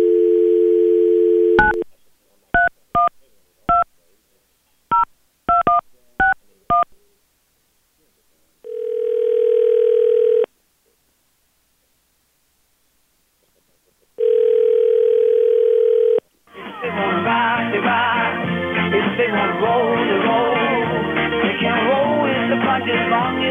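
Radio hosts of B93.7 placing a phone call live on air: a steady telephone dial tone, then a quick, uneven string of about eight touch-tone dialing beeps. Two long, low ringing tones follow before reggae music starts playing down the line.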